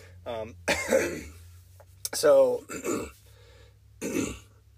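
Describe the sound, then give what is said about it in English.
Several bursts of coughing and throat clearing, spread across a few seconds with brief pauses between them, mixed with bits of voiced sound and a low steady hum underneath. “Sorry for my coughing.”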